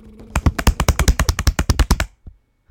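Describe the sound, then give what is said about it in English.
A quick run of about fifteen hand slaps on a hard surface, evenly spaced and loud, like an improvised drum roll, ending with a couple of softer taps. “That just sounded like slapping.”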